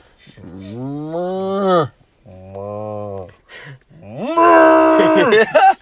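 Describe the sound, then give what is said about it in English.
A person imitates a cow with three drawn-out mooing calls, the last one louder and more strained, each separated by brief pauses. The voice is fairly loud. “Moo. Moo like a cow.”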